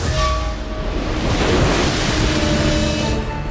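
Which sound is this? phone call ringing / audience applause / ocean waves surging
ocean waves surging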